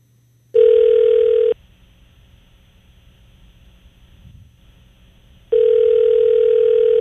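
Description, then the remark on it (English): A telephone ringback tone on an outgoing call: two loud, steady electronic rings, each about a second long, separated by roughly four seconds of near-silence, with no voices present. “Is it ringing?”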